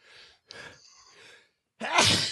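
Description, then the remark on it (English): A few sharp, breathy inhales build up, followed by a loud, explosive sneeze, with no talking. “I'm going to sneeze again.”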